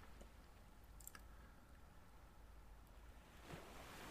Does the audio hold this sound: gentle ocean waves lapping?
yes